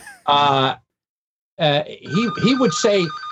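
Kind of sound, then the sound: household object, telephone ringing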